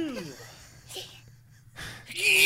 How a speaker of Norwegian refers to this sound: Er det noe nys?